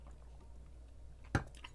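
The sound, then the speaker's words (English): A single quick, wet sip of water with a short slurp and faint mouth noises after it, over a steady low hum. Nobody speaks. “I'm going to take a sip of water real quick.”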